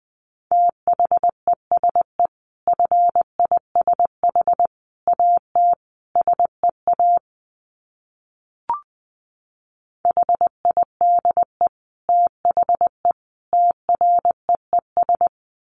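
Morse code at about 20 words per minute: a steady mid-pitched tone keyed into quick dits and dahs, with a pause in the middle broken by a single short click before the beeping resumes.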